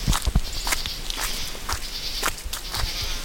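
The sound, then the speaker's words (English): Crunching footsteps on the gravel path leading to the top of Max Patch, a bald on the Appalachian Trail, on a sunny fall afternoon: a steady walking rhythm of crisp, gritty steps, with a faint buzz of insects and no talking. “On a sunny fall afternoon, on the gravel path leading to the top of Max Patch, you hear the whistle of the trees as a bird circles the top of the bald.”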